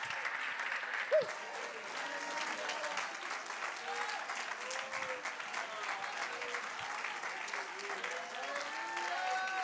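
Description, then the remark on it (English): A church audience claps hands to praise Jesus in a dense, sustained wash of applause, steady and loud for the full duration, with scattered voices calling out and murmuring underneath. “Let's clap our hands and lift our voice.”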